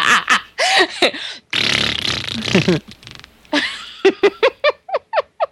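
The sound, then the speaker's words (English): A loud, sputtering fart noise sound effect with a long raspy middle stretch, then a string of quick, evenly spaced bursts that gradually thin out, with no talking. “I'll just put a 4-minute fart noise in there.”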